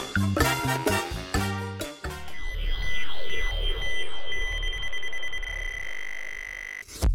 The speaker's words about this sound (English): So hop aboard our time machine sound effect and join us, won't you? And where'd I put the keys for this thing? Do sound effects even have keys?